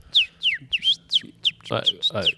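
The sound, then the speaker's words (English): Someone whistles a bird-like call: a quick series of about seven high, downward-sliding chirps at a steady pace, with a brief burst of voice mixed in toward the end. “And like, we need to be taking bird sounds and whacking them on a piano keys and then ripping out tunes with bird sounds.”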